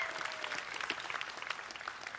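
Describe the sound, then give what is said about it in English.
An audience at a church service applauding friends in the family room: steady, dense clapping from many hands, a continuous crackling patter at moderate level, with no voices rising above it. “Yeah, you want to give them a hand?”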